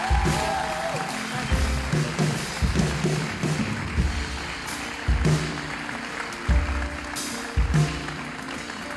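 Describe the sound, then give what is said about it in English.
A crowd applauds steadily in appreciation of the speaker's wife and children. It is a dense wash of many hands clapping, with deep rhythmic thumps pulsing underneath about once a second. “I know we've applauded a lot”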